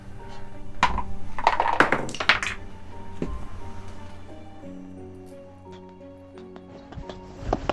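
Dice are rolled during a betting game, clattering and thunking onto a wooden table in a quick, uneven burst, followed by a few scattered knocks later, with a low steady hum underneath and no one speaking.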